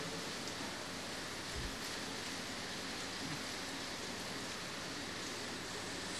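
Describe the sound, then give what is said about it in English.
Steady rainfall fills the scene with a dense, even hiss, a continuous wash of drops with no voices over it. “Although the rain is kind of ruining my joke, there wouldn't be rain.”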